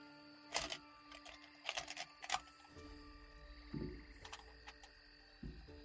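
Dice clatter and click together in short bursts as they are pulled out and handled, with a few sharp rattles spread across several seconds, moderately loud, with no one talking.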